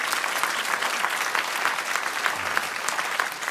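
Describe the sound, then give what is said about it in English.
An audience at a Christian sermon applauds steadily, with dense, overlapping hand claps forming a continuous bright crackle that holds at an even loudness for the whole stretch. “Clap your hands for a moment.”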